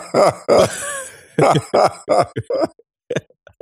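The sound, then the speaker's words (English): A man boos over and over, a run of loud, drawn-out vocal boos with falling pitch, trailing off into a few shorter, fainter sounds. “if I sound out of breath, it's because as the white guy on the podcast, I've been booing the shit out of him.”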